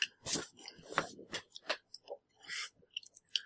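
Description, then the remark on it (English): Loud crunching as uncooked rice is chewed, with a rapid series of sharp, brittle crackles and bites spread over a few seconds, no talking. “I'm gonna rate uncooked rice out of grape nos.”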